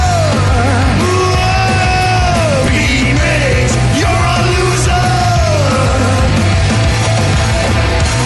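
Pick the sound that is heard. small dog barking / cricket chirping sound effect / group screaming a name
group screaming a name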